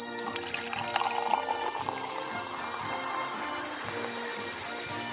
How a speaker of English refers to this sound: Cheers. I didn't know Mick could pour 5 gallons of gin that quickly.